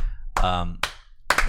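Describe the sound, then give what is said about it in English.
A couple of slow, deliberate hand claps spaced about half a second apart, fairly loud, with a brief vocal sound just before them; a slow clap by three people on a studio show. “The slow clap.”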